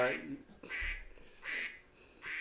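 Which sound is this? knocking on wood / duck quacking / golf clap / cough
duck quacking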